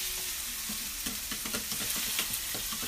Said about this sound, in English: Do it gently. Don't let it down. Just mix it on. It's okay. Now hold it. Hold the handle. And whisk it like this.